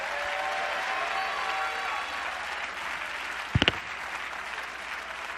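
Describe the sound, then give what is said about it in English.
A church audience claps hands at a preacher's call, in a steady, dense wash of applause that holds at a fairly even level, with a couple of sharp, louder claps standing out near the end. “You ought to clap your hands if you believe that and shout to God.”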